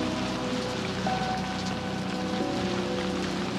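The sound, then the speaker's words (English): Steady rain pours down, a dense, continuous hiss of drops striking a surface, with a faint low hum running underneath and no voices. “Let's run through the rain.”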